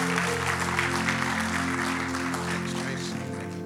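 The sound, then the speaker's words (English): An audience claps steadily for several seconds to welcome a pastor invited to speak, a dense wash of hand claps over a sustained low musical drone, fading slightly toward the end. “If you will, let's give a hand clap for Brother Vincent as he comes to share the word today.”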